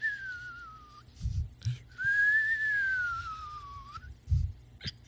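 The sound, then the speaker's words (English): Two long, smooth whistled calls slowly rising and falling in pitch, like a bird's song imitated by whistling, standing for birds in the trees of a forest, with soft low thumps in between and no talking. “Yeah, there are so many birds in the trees.”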